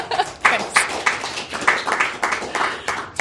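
A short burst of audience applause: many hands clapping in a dense, irregular patter of sharp, bright claps that holds steady at moderate loudness for a few seconds.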